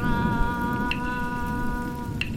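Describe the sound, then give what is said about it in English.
Soft, steady rain hisses, with an occasional brighter drip, while a sustained humming drone holds underneath throughout. No voices are heard. “Let's connect into the rain.”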